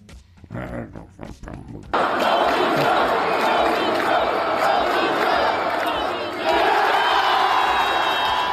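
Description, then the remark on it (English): A large Northwestern home crowd chants "No means no" at the visiting player Shannon during a road game, in unison, loud and continuous, rising suddenly after a couple of seconds of scattered voices and holding a dense, rhythmic roar to the end. “If you couldn't understand what was being said, they were chanting, "No means no."”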